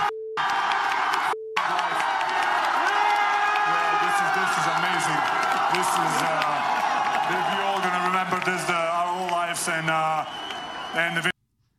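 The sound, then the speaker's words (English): A large crowd at the NBA parade in Denver with Nikola Jokic cheers wildly after profanity. Whoops and high children's voices mix into a loud, dense roar that holds steady for about ten seconds before cutting off. A short beep sounds at the start. “It upsets me that people cheer wildly for profanity.”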